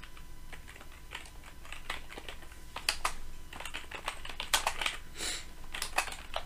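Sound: typing on a keyboard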